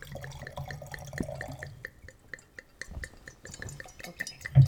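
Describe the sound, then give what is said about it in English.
Wine glugs and splashes steadily into a glass, a bright liquid trickle with a few small dripping sounds and a soft clink near the end. “So I'm going to pour this in your glass here.”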